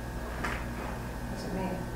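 A faint, brief scraping sound, like furniture dragged across a floor, rises once and fades in a quiet room with a low background hum.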